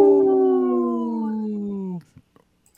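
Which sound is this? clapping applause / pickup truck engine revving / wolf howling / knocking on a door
wolf howling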